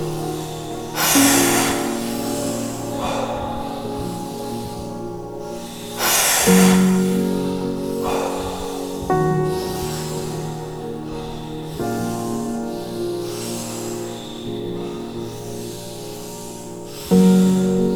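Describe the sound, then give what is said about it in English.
Slow, deep breaths, each a long airy inhale and exhale about every four seconds, over a steady soft musical drone with no talking. “Not too fast. Breathing deep.”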